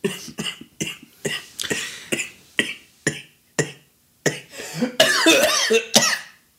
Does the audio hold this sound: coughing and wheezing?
yes